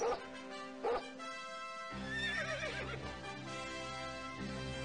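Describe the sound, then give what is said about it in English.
Dogs bark in sharp bursts while a horse whinnies with a high, wavering cry, all set over a steady, sustained tonal backdrop, in a Super Bowl commercial; no one speaks. “A lot of dogs and horses.”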